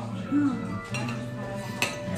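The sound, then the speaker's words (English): A glass squeaks briefly with a short rubbing tone, followed by a couple of light clinks of glassware and dishes, over a low background hum. “Quarter of a glass squeaked, so yeah, there we go.”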